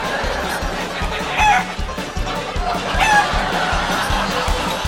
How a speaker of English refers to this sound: my neighbors have 100 chickens running around the yard.